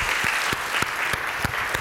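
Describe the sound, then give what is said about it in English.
A crowd applauds its marketing leaders, steadily, a dense wash of clapping with a few sharper individual claps popping out at irregular moments, fairly loud and sustained throughout with no talking. “Let's give a round of applause to our marketing leaders.”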